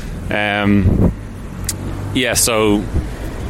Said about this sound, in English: I'm a little bit further down the road and there's a horrible diesel truck making lots of noise.